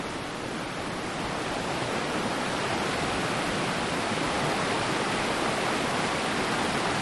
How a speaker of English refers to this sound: This mountain river that we're listening to, let's see that.